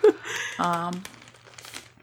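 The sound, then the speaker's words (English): Crinkling of a bag of Rob's Backstage Popcorn, a gluten-free snack with red pepper, onion, garlic, turmeric and carrot, with crisp crunching bits as it is eaten, a short muffled voiced murmur in the middle, then softer rustling fading out. “I might crunch a little bit. I was actually eating some up here.”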